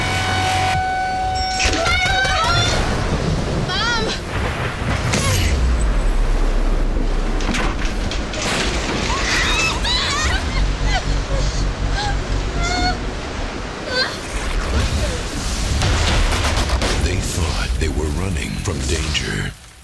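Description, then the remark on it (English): Tornado winds roar loudly and steadily for the whole stretch, with a deep low rumble beneath and scattered high, wavering squeals and cries cutting through the storm noise. “Get out of the tornado!”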